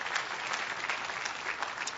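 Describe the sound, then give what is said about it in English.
A crowd applauds steadily, dense overlapping claps forming a continuous, fairly loud wash of sound with no voices standing out. “Jesus put it like, yeah, we could clap for that.”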